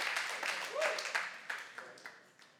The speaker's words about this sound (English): We support the ministry of the Lord because, thank you for those two claps.